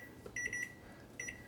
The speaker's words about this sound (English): And I'm going to set the timer for 22 minutes.